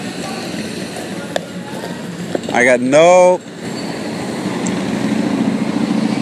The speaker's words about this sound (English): I don't know if you could hear it, but it's a guy with a big-ass chopper. Like, his front wheel of his bike is, like, 3 feet too far in front of the bike. So he just takes up more room on the road.